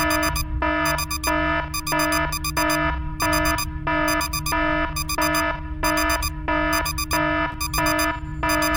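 An alarm clock rings with rapid, evenly spaced electronic beeps, loud, repeating steadily over a low continuous hum, with no voices.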